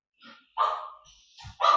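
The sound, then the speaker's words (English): Two dogs bark in a few loud, sharp bursts, with a fainter yelp between them and no one talking. “Okay, that's okay. I know the dogs.”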